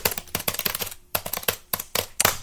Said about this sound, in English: That was a funny reference to the loud keyboard sounds that appear in MGM issue number 1 from November or September of 2015.